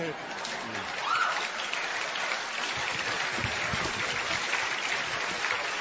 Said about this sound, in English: Okay, all right, it's real applause, thank you.